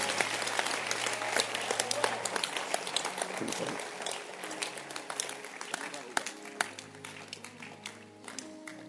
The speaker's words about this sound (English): Clap your hands and you'll be seated.